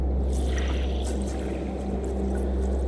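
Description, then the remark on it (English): Steady ocean water swishes and rushes without pause, a dense, full wash with a deep low rumble underneath. No one speaks, and the water stays fairly loud throughout. “Travelling with hundreds of your family and friends, being carried along with them through the beautiful ocean.”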